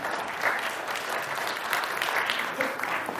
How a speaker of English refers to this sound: And our two young ladies up here are acting it out also. That is perfect. G- Give these ladies a round of applause.